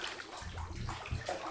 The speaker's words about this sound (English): First, Cowy takes a nice, warm bubble bath.